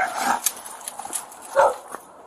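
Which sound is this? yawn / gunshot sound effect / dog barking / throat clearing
dog barking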